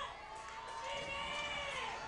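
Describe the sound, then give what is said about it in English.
The Fort Payne football crowd cheers in a steady, sustained roar, many voices blending into a loud wash of noise that swells slightly toward the end of the two seconds. “Fort Payne crowd getting the folks charged up.”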